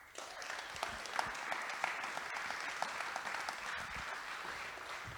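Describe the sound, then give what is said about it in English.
A crowd applauds steadily for about five seconds as panelist Tony Konechny is introduced, a dense wash of many hands clapping at an even level with a few sharper individual claps standing out. “First, round of applause for Tony Konechny.”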